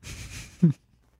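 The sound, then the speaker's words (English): A voice imitates a film character's heavy, muffled breathing through his mask apparatus: a long airy hiss lasting over half a second, ending in a short low grunting puff, then silence. “Him breathing through his apparatus because Christopher Nolan doesn't know how to mix sound, as evidenced by his hit movie, The Tenet.”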